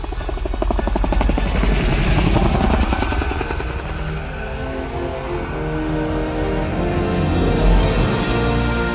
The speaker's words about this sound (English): Head back, Raymond. Raymond turned the helicopter to fly back.